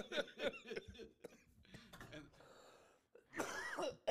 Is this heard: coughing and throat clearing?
yes